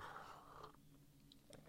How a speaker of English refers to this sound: I'm just going to have a slurp of coffee.